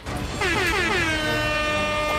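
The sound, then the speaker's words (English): A loud siren sound effect introducing a sports show's 'Upset Alert' segment blares, its pitch gliding downward before holding a steady, sustained wail for the rest of the short clip, with no talking. “Those sirens means it's time for the hottest segment in all of sports, a segment so hot, my grandmother's friend called me and said she might have a problem, and I said, sir, mind your business.”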